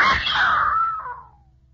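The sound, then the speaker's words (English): A single piercing scream of fright rings out, loud and shrill, then trails off and fades within about a second, leaving quiet behind. “Yeah, I screamed.”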